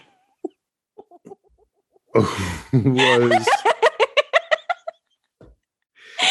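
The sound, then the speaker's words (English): A loud crow from a rooster living across the street rises and stretches out, then breaks into a quick run of descending clucks before stopping. A few faint clicks come before it, and a brief sound follows at the end. “a little over a month ago, I noticed that there was a rooster living across the street.”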